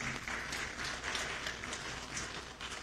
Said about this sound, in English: Hey guys, let's give our worship team a round of applause this morning. Come on.